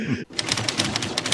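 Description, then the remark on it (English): Rapid, steady clacking of 1,000 typewriters worked by 1,000 monkeys, many keys striking in a busy rhythm, with a murmur of voices or chatter underneath after a brief opening burst of sound. “This is 1,000 monkeys working at 1,000 typewriters.”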